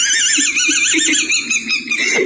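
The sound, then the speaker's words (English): A loud, continuous squeaky squeal like a dog toy squeaker, its high pitch wobbling up and down in quick wavering pulses for a couple of seconds with no talking. “Year-old accidentally swallows dog toy squeaker.”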